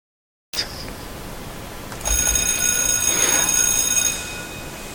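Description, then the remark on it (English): A bell rings steadily for about two seconds with a bright, shrill metallic tone and sustained high overtones, following a short click. No one speaks. “That was the bell.”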